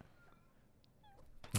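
A faint, short meow from a cat that has just arrived, with a drawn-out, slightly falling tone over quiet background noise, followed by a sudden loud bump at the very end.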